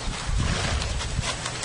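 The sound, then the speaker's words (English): A horse passing gas in one long, breathy, rumbling rush of air, fairly loud, lasting under two seconds with no voices. “Could you imagine having all that air in your intestines? How good that must feel just to let exactly. It go.”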